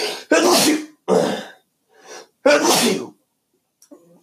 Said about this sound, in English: Excuse me, I'm going to have to sneeze.